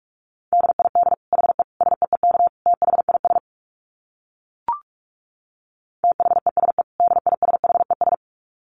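Fast Morse code at about 45 words per minute: a steady mid-pitched tone keyed into rapid dits and dahs, sent in two bursts with a short pause and a brief click between them.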